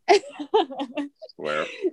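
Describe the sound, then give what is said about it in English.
A woman who is choking on water coughs and sputters in a run of short, strained, throaty bursts, followed by a longer rasping, voiced fit of coughing or gasping. “She's choking on water.”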